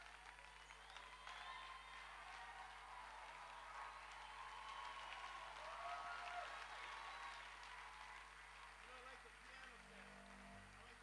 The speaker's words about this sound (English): I'm done preaching. Stand up and give the Lord a big clap in this place.